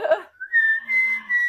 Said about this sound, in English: Oh, that's a copyright strike. I don't want to whistle